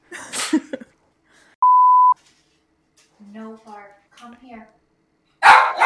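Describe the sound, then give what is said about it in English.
A dog lets out a couple of short barks midway through, after a steady electronic bleep and a burst of noisy clatter, with another loud noisy burst at the end. “No bark. Come here.”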